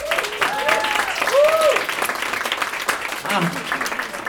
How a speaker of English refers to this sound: But anyway, thank you so much for coming. Give yourselves a huge round of applause.